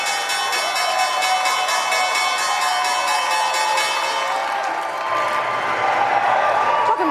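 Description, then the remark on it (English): The opening bell of the New York Stock Exchange on a Thursday, a sustained, ringing electric bell, clangs steadily for several seconds over loud crowd applause and cheering, then cuts off, leaving clapping and excited voices in a busy crowd. “That was the opening bell this Thursday, and we do see a higher open for stocks.”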